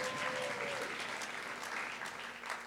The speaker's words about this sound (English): So let's one more round of applause for our new vestry members.